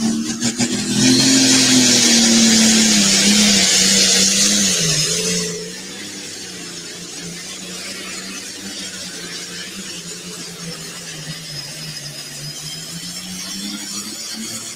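A John Deere pulling tractor driven by Bailey Fawson roars loudly at a tractor pull with a low, steady drone and strained harmonics, the crowd's roar riding on top for several seconds before dropping off while the engine keeps rumbling. The pull measured 344.22.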